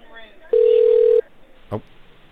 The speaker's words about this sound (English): Okay, you're going to hear the phone ring, ma'am, and when it answers, it's going to be PayPal.